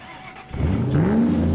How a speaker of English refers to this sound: The sound of this engine, music to my ears. I tell you.